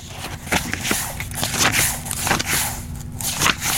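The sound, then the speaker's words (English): Paper pages being flipped in a book, a series of crisp, irregular rustling swishes and crackles over a faint steady low hum, with no voices. “Flipping paper in a book.”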